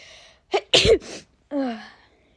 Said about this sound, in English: Oh, sorry, I sneeze.